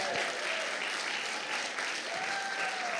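Steady, dense applause from an audience after a testimony, a continuous wash of many hands clapping at even loudness throughout, with faint crowd noise mixed in and no clear speech.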